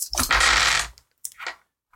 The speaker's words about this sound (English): So many dice. No, that's not. No. 11, 18. I just heard 11, 18. So many dice. There's still more rolling. I know. He's been rolling for like 35 minutes.